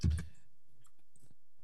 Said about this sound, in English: Yeah, I can, and I can hear you typing away because you're using your computer mic.